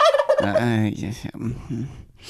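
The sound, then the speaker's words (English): A turkey gobbles in a rapid, warbling burst of throaty, rattling notes, loud and alone, trailing into lower clucking sounds before a brief hiss at the end. “Just imagine how the turkey's feeling.”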